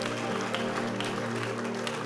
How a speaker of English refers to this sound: Clap and give God praise.